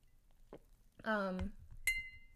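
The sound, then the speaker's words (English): A single small, bright clink rings out, its metallic tone briefly lingering, after a short stretch of voice. “Ooh, do you hear that? Little clink.”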